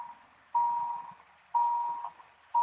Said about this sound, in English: Your beeping is killing me. I'm sorry. I don't even hear. I know, because you're so used to that shit.